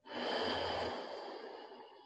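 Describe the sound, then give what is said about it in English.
A single long, breathy exhale made through the throat during a breathing practice, with a hissing, throaty rasp, fairly loud, sustained for about two seconds and tapering only slightly at the end. No talking. “Make the sound of your breath come from your throat.”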